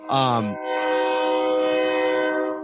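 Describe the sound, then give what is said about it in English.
A train horn sounds loudly, with a short blast that slides downward and then a long, steady chord-like blare that holds for a couple of seconds. “I hear the train in the background.”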